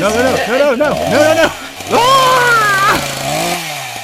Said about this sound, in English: What'd you do to your arm? I replaced it with a chainsaw. Oh my God. Watch where you're pointing that thing.